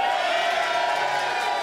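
A large audience cheers and shouts together in a loud, sustained roar of mixed voices, with scattered whoops rising from the crowd throughout, cheering for James Haskell.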